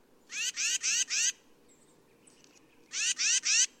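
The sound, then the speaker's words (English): A bird gives a series of harsh, raspy call notes: four quick rasping bursts, a short pause, then three more, over a faint low background rumble. “Bird vocalizations come in two general types: songs, used to attract mates, and calls, with other meanings such as alarm or just, "Hey, I'm over here."”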